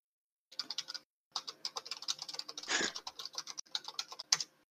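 Rapid, clattering computer keyboard typing with dense, irregular clicks in quick bursts, a brief pause, then more keystrokes and a heavier thump near the end. Fairly loud, with no voices.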